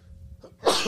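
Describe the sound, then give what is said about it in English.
A single sharp, loud sneeze bursts out near the end, breathy and hissing, after a brief quiet stretch with only a low background rumble and no talking. “Bless you.”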